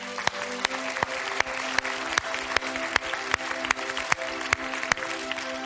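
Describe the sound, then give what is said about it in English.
A crowd applauds steadily for several seconds, with sharp claps falling in a regular beat through the dense clapping, while a soft sustained musical chord holds underneath. “Could we give these a round of applause?”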